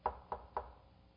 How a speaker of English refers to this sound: Then here comes a knock.